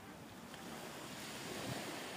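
Steady ocean surf washing in on the shore, a broad continuous rush of water with a gentle swell in loudness toward the end, soft, with a hint of wind.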